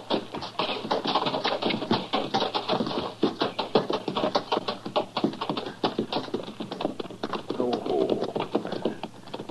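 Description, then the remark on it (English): Horses bearing Granby's brand clop in a quick, steady rhythm of sharp hoofbeat taps that continues throughout, fairly loud and dense, as if several hooves strike in overlapping patterns. “That's Granby's brand on those horses, though.”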